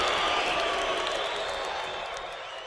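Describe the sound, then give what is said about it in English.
A soundboard crowd-booing sound effect: a large crowd boos loudly and steadily, a dense, sustained roar of many voices that fills the whole stretch and tapers off slightly toward the end. “The boos are quite long this time, aren't they?”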